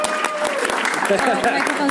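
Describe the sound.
A crowd breaks into a steady round of applause, many hands clapping together in a dense, crackling wash that stays fairly loud throughout, with a few voices faintly mixed in.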